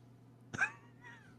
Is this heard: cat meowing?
yes